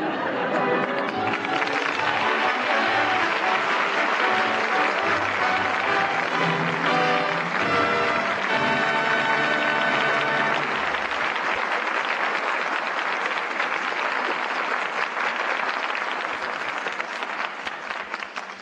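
Sustained applause from a large theatre audience as the curtain falls on Father Was a Fullback, calling back the stars Maureen O'Hara, Paul Douglas and Betty Lynn; a dense steady wash of clapping that stays loud throughout before starting to thin out at the very end.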